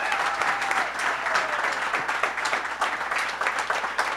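A crowd applauds the coffee partners steadily, a dense wash of many hands clapping at once that holds at an even, fairly loud level throughout without dying away.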